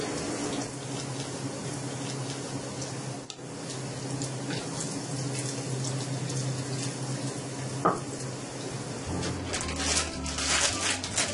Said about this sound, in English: I'm also frying some French fries. And with the potato, put a little bit of black pepper on it. I take out the grease in the oil first, and I use the same oil to fry the French fries.